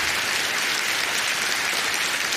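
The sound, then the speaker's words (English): Dense, steady applause from an audience, a continuous crackle of many hands clapping at even loudness throughout with no voices on top. “We're going to get some clapping on Eskimo that Brothers.”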